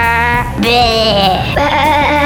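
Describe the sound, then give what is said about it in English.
A person's voice imitates a sheep, giving a loud, wavering bleat in a few pitched pulses over about two seconds, clear with no other sounds. “Sheep.”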